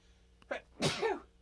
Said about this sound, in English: Bless you. Pardon me.